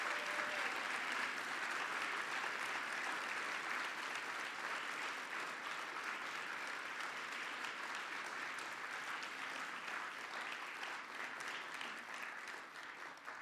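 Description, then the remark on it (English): Steady, dense applause from a large audience for five speakers holds at an even, loud level for over thirteen seconds, a continuous crackle of many hands clapping at once with no voices standing out. “Let's give one more sustained applause for all five of our speakers.”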